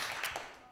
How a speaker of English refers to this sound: So, basically... I don't need you guys clapping for me.